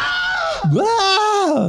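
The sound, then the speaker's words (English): A single loud male scream, the classic Wilhelm scream stock effect: a sharp cry that drops briefly, then swoops back up into a strained, wavering wail lasting under two seconds, with no talking. “And I don't know if you noticed, but as the river took him under, there was a Wilhelm scream.”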